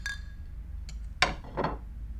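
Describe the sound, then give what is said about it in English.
Glasses clinking in a toast: a faint ringing tone fades out, then a few short, bright clinks follow over a low background hum, with no one speaking. “Aw, cheers. Cheers.”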